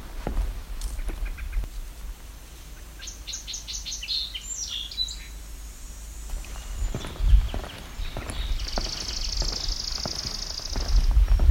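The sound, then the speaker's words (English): Outdoors, a chipping sparrow delivers a fast, dry, even trill for a few seconds after some scattered chirps from other birds, while footsteps crunch. “That one's sounding like a chipping sparrow.”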